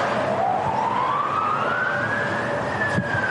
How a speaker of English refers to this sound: Raid sirens sounded in Kyiv as more than 120 Russian missiles and dozens of drones were fired at Ukrainian targets. The Ukrainians intercepted many of them.